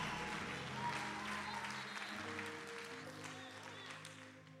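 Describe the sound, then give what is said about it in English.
A church audience applauds steadily, dense hand clapping filling the whole stretch at a fairly even loudness, with sustained organ-like tones droning underneath. “Everybody should be clapping their hands right now.”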